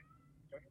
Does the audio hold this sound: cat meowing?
yes